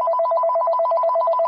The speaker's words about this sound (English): And after some time, my mobile phone rang.